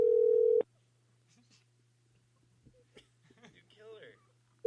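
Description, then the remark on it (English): A loud, steady phone ringback tone from a call to a grandmother who does not answer sounds briefly, then stops, leaving a low hum and faint muffled shuffling before the next ring begins at the very end. “Nana, answer the phone. Yo, pick up.”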